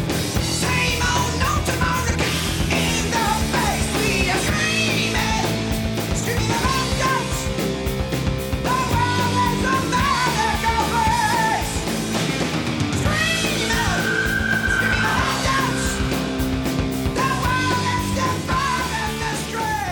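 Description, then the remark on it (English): A loud, dense 1982 heavy metal song, the title track of its album, with distorted guitars and pounding drums, while high-pitched screamed vocals wail over the top at a constant, driving intensity. “My number six, and it would have been higher a few days ago, is the title track from 1982's ….”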